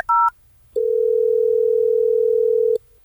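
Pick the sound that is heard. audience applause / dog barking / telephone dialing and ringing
telephone dialing and ringing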